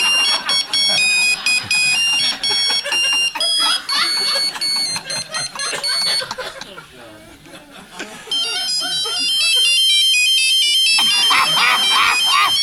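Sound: cell phone ringtone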